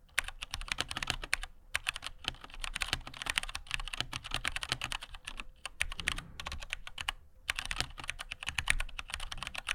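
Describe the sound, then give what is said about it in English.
Steady, rapid typing on a mechanical keyboard with brown switches, a dense stream of clicky keystrokes with a few brief pauses, and no voices. “Yeah, can we put your browns next to it? Yeah. I want to hear blues next to browns.”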